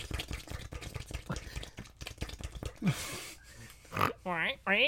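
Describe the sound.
A pig snorts and oinks in a quick, rough series of grunts, followed by a few louder, higher-pitched oinks near the end.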